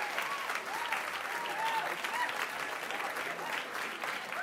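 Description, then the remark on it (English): Sustained audience applause for a comedian making her way up to the stage, a dense steady patter of many hands clapping at an even loudness throughout, with a few faint cheers and voices mixed into the crowd noise. “She's coming down there, so we'll have a second wave of applause”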